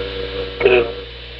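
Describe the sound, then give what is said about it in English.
A DEA pager set to vibration mode buzzes on the trunk of a car in one short, rattly burst lasting about a quarter second, rising over a steady low electrical hum that continues throughout. “It was Jorge's DEA beeper. I had the beeper that I had been using with Chris and David on vibration mode on the trunk of the car.”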